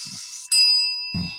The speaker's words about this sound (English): So we're going to put that to rest. So we get three bells to put that to rest.